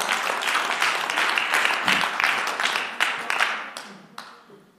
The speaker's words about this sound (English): And that should be a hand clap right there.